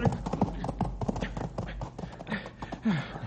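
A horse's hooves clatter in a quick, uneven rhythm of sharp clip-clop strikes, scrambling and stamping over hard ground without pause as the horse acts up with a rider near the edge of a canyon.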